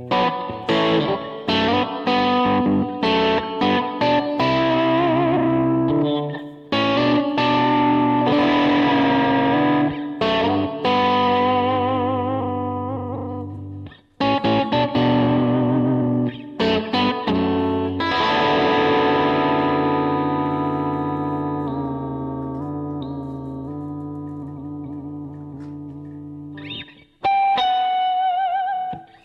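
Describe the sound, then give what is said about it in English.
An electric guitar plays chords and single notes through a Levitate combined reverb and delay pedal, with long echoing repeats and washy reverb tails smearing each strum, slightly distorted, loud with no voices. “That is a reverb and delay pedal in one.”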